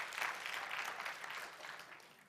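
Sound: audience applause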